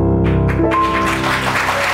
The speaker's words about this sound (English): Why are you applauding?